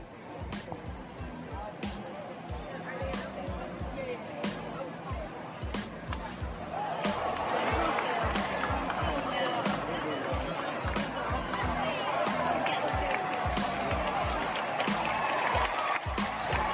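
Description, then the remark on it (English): A baseball crowd at Kauffman Stadium on a Sunday afternoon, watching the last-place Royals, murmurs and chatters with scattered claps, then swells into louder, sustained cheering about halfway through, after a sacrifice fly, that holds steady to the end. “Even though the Royals are in last place, the crowd is still into it.”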